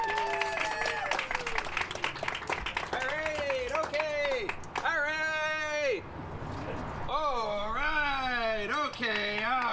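Loud, steady audience applause with dense clapping throughout, mixed with high whoops and cheers that rise and fall over the crowd noise.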